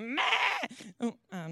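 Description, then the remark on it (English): A human voice imitates a sheep being shorn, giving a loud, wavering bleat followed by a few shorter quivering bleats, clear with brief pauses between. “And the sheep, oh my goodness, they did not be shorn in silence, that's for sure.”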